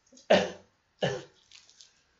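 Two loud coughs about a second apart, each a sharp harsh burst that trails off quickly, followed by faint rustling.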